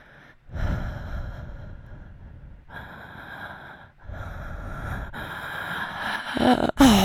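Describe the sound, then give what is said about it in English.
Heavy, congested breathing of a person still suffering from COVID symptoms: three long, rasping pulls of air with snorty, clogged texture, growing more strained and ending in a sharp snort-like gasp. “You have, I'm so in fact, proven that you can almost breathe.”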